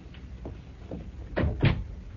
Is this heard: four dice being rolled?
no